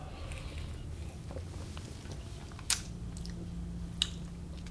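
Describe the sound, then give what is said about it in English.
Quiet sipping of an English-style mild ale beer over a low, steady background hum, with two brief, soft mouth or lip sounds spaced about a second apart and no talking. “Sometimes it takes a second sip before you can”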